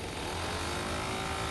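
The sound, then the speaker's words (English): A small gas leaf blower engine runs steadily and loudly, a droning low hum beneath a broad, hissing rush of air, with no pauses or changes in pitch. “If you just hear the sound of a leaf blower, it has these really interesting low-frequency and high-frequency components.”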